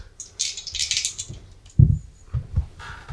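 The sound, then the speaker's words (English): A brief clattering rattle of dice tumbling and knocking together, followed by a few low thuds as they settle, rolled for a law check in a role-playing game and landing on 12, with no talking. “can you please give me a roll for law?”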